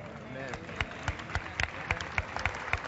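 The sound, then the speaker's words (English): An audience breaks into clapping during a sermon, a steady run of about a dozen sharp, fairly evenly spaced claps over a faint murmur of voices. “I got a few more claps.”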